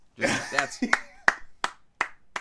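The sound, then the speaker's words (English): A slow, polite golf clap: six or seven soft, evenly spaced hand claps, with a brief stretch of voices murmuring underneath at the start. “Yeah, that's worthy of a nice golf clap that he got out before that shitstorm ensued.”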